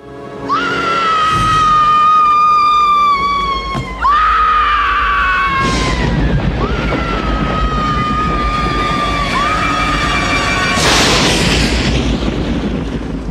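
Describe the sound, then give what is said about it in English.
A woman in a horror film lets out long, piercing, sustained screams, several in a row with brief breaths between, while deep rumbling thunder and loud crashing booms roll underneath. Loud throughout. “I will say probably one of the greatest screams in horror history right there.”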